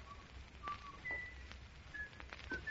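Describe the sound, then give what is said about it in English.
A killer whistles a slow tune, a handful of clear, sustained notes stepping up and down in pitch, fairly soft, with a few faint knocks and background hiss. “It's the whistling killer.”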